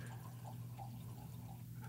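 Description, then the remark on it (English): A natural lime White Claw hard seltzer is poured into a Viva Bocce classic wine glass in a quiet, steady stream for a couple of seconds, with soft gurgling over a low background hum and no talking. “Oh, sounds fresh. We've got our Viva Bocce classic wine glasses here.”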